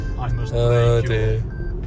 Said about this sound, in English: Now it beeps if you go like 1k over.